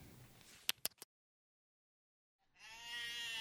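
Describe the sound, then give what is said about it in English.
A few sharp clicks, a short silence, then a loud, wavering bleat from goats in a front yard that rises and carries on to the end with no talking. “Why are there goats in your yard?”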